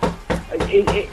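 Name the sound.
knocking on a door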